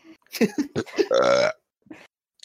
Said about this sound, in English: All right, that's going to be like, I think that's the third burp I'm going to have to edit out of this episode.